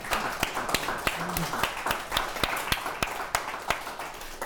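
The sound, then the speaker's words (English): A small round of applause from an audience for everybody: sharp, evenly spaced claps ring out steadily for several seconds over a dense wash of softer clapping and faint background voices. “A round of applause for everybody.”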